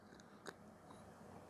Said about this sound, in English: I'm going to just drop a little bit here in a glass, just a finger or two into my small special glass. And throughout today's episode, in honor of Mexican Appropriation Day, I'm going to take a sip here and there. We'll start off with one right now.